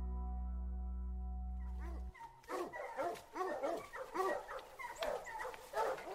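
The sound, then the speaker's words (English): A steady low hum fills the first two seconds, then a pack of bear-hunting hounds, probably about 25, breaks into continuous, overlapping barking and baying, several dogs at once, loud, in the Smoky Mountains of western North Carolina in drizzling rain, mountaintops covered in fog. “For anybody that cares about bear dogs, what I'm seeing is an incredible scene.”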